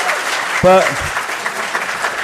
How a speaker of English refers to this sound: But, and everything you've just said, by a round of applause for what you just said, by the way, it is all of that.